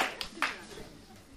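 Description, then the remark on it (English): Brief, scattered audience clapping for the speaker after reading a passage aloud, with a few sharper hand claps, fairly soft, while a voice murmurs faintly underneath. “Okay, I deserve a round of applause for being able to read that.”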